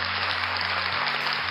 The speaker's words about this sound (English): At last, I got an applause.